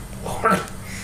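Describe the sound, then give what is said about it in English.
A brief, high-pitched whimper from an excited dog rises out of low background noise, a single short excited whine lasting only a moment. “This dog might as well just be high because like he is enjoying himself so much.”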